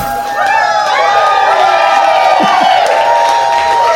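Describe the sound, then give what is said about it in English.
A large studio audience at a live Doug Loves Movies show at South by Southwest cheers loudly, with overlapping whoops and shouts rising and falling throughout, backed by a steady wash of clapping along to the show's song. “Whenever the audience clapping doesn't match up with the song, we just put the song in clean.”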